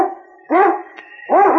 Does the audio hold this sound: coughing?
no